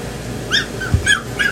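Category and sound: animal, dog barking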